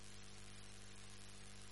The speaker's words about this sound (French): Je ne vous entends pas. J'entends seulement les quoi là? Ventilo.